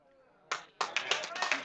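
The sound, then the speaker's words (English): Audience applause breaks out: a lone sharp clap, then many hands join in a dense, bright patter of clapping that continues steadily, with a faint murmur of voice at the start. “Yeah, I hope you're clapping for God.”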